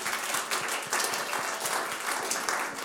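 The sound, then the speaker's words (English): A crowd applauds the preached word, dense overlapping claps forming a continuous bright patter at moderate loudness, with no voices over it. “A round of applause for the word.”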